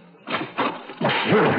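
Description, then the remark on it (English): A door that has just cracked open is slammed back hard against a man with full force, knocking him across the room: a few heavy, muffled bangs in quick succession, the last one longer and rougher, like a forceful crash and scuffle. “As soon as I saw the door crack open, I slammed it back on him with all my might and knocked him halfway across the room.”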